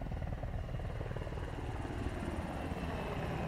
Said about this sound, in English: Sergeant Major, there's been an unscheduled departure of one of our new assault choppers. They just left.